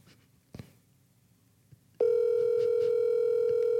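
An outgoing call's ringing tone: after a couple of seconds of quiet handling noise, a loud, steady electronic tone begins and holds unbroken to the end.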